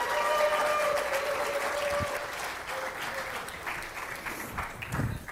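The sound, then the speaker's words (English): An audience claps steadily for several seconds as two helpers are brought up to help with a demonstration, a dense, even patter of many hands that holds strong before easing slightly toward the end. “So bring up with an applause”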